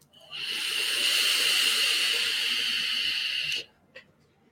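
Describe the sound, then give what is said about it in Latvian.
A steady, airy hiss of a long draw on a sub-ohm vape tank, lasting about three seconds, then stopping, followed by a brief soft puff. “Tvaika mākons ir labs, bet nav tik biez tik tumīgs kā ar Sakerz, ok?”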